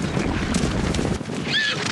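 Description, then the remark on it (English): A thundering herd of wild mustangs gallops across the sagebrush badlands of northern Wyoming's high desert, many hooves pounding in a dense, continuous rumble, with a high whinny cutting through near the end. “But in this empty quarter of the cowboy state is a thundering herd of mustangs.”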